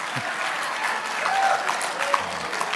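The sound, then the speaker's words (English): A single person claps steadily for about three seconds, a fairly even patter of claps at moderate volume with a faint murmur in the background. “Somebody's clapping for that.”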